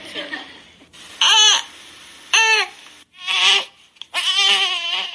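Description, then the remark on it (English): A baby girl fusses and cries in four short, high-pitched wailing bursts separated by brief pauses, each cry loud and strained, with the last one longer and more drawn out; the cry is said to mean she needs to burp. “She's got a burp.”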